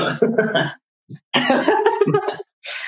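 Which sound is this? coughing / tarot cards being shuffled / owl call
coughing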